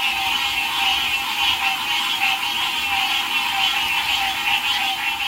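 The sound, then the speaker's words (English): A dense chorus of many screeching frogs at night by a pond in Hilton Head, croaking and screeching at once, loud and continuous with a shimmering, pulsing texture and no gaps. No voices are heard. “I've got audio of this that you haven't heard yet, but I'm going to play it. Screeching frogs.”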